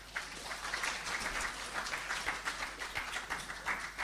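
A crowd applauds steadily, a dense wash of many hands clapping at once with a bright, crackling texture, holding at an even level for about four seconds with no voices.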